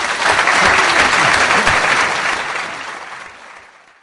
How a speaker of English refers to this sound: I think we can give Sir Bernard a round of applause.